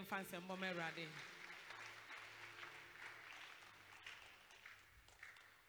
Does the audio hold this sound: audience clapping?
yes